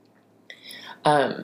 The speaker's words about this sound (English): I'm going to clear my throat, everyone. I'm so sorry.